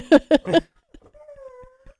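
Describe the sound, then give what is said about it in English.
A dog named Jet, wanting to get at a cat, whimpers: three quick, loud, yelping whines in a row, then a pause and a longer, thin, high-pitched whine that holds steady and trails off softly. “What's the matter? Jet wants to get the kitty.”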